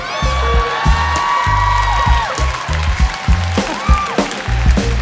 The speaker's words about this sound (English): I've never gotten applause for it before.